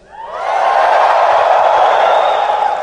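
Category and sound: crowd, audience yelling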